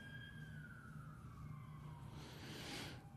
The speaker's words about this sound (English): You know, it's, there's the sirens. It must be any time in Lexington.